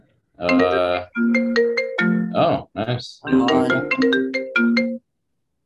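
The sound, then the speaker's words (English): A phone ringtone for an incoming call plays loudly during a fantasy draft being recorded, a bright melodic run of electronic tones lasting about five seconds, with a person speaking briefly over it. “Getting phone calls in the middle of a fantasy draft that I'm recording.”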